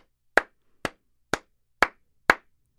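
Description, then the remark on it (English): Six sharp, evenly spaced hand claps at a slow steady beat, imitating a crowd cheering outside the courthouse in Worcester, each loud and crisp with a short tail and silence between. No cheering or voices accompany them. “People were literally cheering.”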